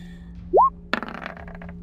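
A short rising whistle-like tone, then dice clatter and tumble across a hard surface in a quick burst of sharp clicks that settle and fade out. No one speaks.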